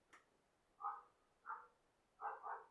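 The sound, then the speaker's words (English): An adult dog barks four times outside, faint and somewhat muffled, with short harsh yelps spaced irregularly and the last two coming close together. No one speaks. “That is a adult raging dog outside.”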